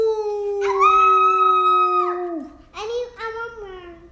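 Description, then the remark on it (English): A person imitates a wolf howl, a long sustained wavering howl that slides down at the end, followed by a shorter second howl with a rising, warbling pitch. “So he howled for help. Howl!”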